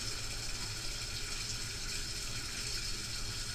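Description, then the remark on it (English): Water pours steadily into a pit in the sewers, a continuous rushing, gushing flow with a hollow resonance, constant throughout, with no voices. “you can hear the water flowing into that pit now”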